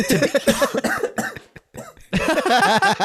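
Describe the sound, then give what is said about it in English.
A loud fit of repeated harsh coughs in rapid bursts, a brief pause with a gasping breath, then another run of hacking coughs, a cough from COVID. “Fuck my COVID cough.”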